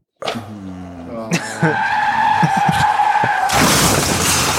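Loud tire screeching as a car skids for several seconds, ending in a sudden burst of harsh crashing noise. No one speaks.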